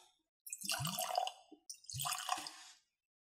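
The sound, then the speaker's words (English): Scotch whisky pours into a glass in two short bursts, each a bright splashing gurgle lasting about a second, separated by a brief pause, with no voices. “That was expert pour, guys.”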